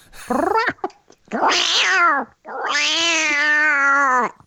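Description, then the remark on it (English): A person's voice imitates a cat, giving three drawn-out, wavering meows, each rising and falling in pitch, the last one long and sustained, with no talking. “Give us your best cat impersonation.”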